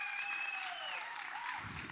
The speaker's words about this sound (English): Thank you, band. How awesome is your band? I think we should give them a big round of applause.